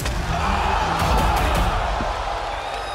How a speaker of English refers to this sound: Spears with a chair shot right to the side of the head of Cody. Why did I smash him in the head at Fighter Fest with a steel chair?